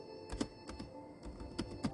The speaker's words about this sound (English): And I'm typing in the description of that right now.